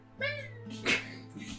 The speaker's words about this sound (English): Cat, this is... That'd be a loud fucking cat. 300 feet away.